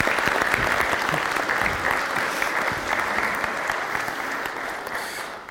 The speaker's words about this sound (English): Would you give them a wee round of applause?